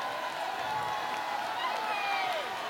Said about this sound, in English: 45-yard. You can hear the crowd.